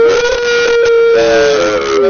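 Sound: voice imitating a siren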